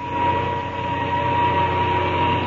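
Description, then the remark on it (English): An airplane engine is started and runs with a loud, steady droning roar and a low, humming throb that holds an even level throughout, with no voices. “All right, hop to it now while I start this engine.”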